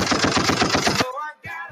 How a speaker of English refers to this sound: Hey, Uncle Charlie get a gunshot.